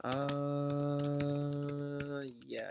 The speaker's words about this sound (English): And I'm even going to write it down, so I don't forget to tell you guys tomorrow. You can hear me typing.